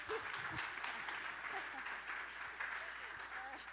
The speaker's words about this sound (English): And you guys can clap for him as he walks. He likes that.